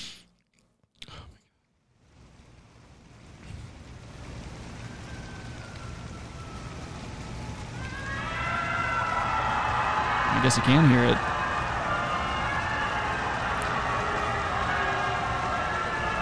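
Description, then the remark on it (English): A crowd's noise swells after a brief spoken line, becoming a dense, sustained wash of many voices booing and yelling at Trump at a Ginsburg showing, with a sharp shout cutting through midway. “They're booing him? Yeah, they're booing him and yelling shit.”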